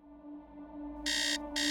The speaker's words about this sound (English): A blaring alarm woke Dr. Ron Lieberman with a start.